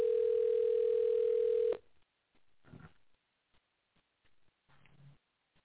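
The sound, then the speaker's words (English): A telephone ringing tone sounds once as a steady, fairly loud electronic hum for nearly two seconds, then cuts off, leaving quiet line noise and faint, scattered clicks with no one answering. “You have to answer your phone.”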